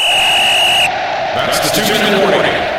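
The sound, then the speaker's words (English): A single shrill referee-style whistle blast, a sound effect blown by the producers of the Talk of Fame Network radio show to signal the two-minute drill segment. It is steady and high-pitched, lasting almost a second before cutting off abruptly, followed by a wash of noisy, crowd-like rumble. “Well, there's the whistle.”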